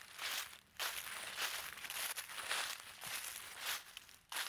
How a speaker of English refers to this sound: Did you hear that? What? I thought I heard a sound, footsteps or something.